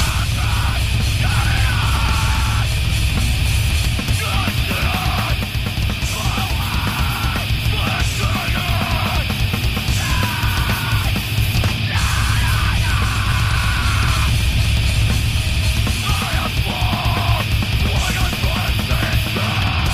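A heavy metal song plays loud and dense throughout, with a wall of distorted guitar, pounding low end, and harsh screamed vocals bursting over the top in repeated phrases.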